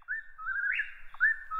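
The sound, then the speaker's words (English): An Eastern Whip-poor-will calling: a clear, loud whistled phrase that slides up and then drops, followed by the start of another rising whistle, with no other sounds around it. “The Eastern Whippoorwill is on the 2016 State of North America's Birds Watch List, which includes bird species that are most at risk of extinction without significant conservation actions to reverse declines and reduce threats.”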